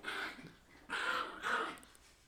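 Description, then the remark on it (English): A quail dog growls in a low, rumbling series of three swelling bursts, moderately loud, with no talking over it. “Can you hear our quail dog in the back?”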